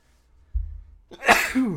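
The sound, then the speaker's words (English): A single loud sneeze bursts out after a brief low rumble and an inhaled breath, ending in a short nasal trailing sound. “Bless you. Could not hold that in.”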